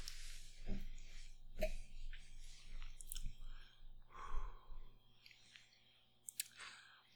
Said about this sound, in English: Okay, I'm going to go in for the short sip.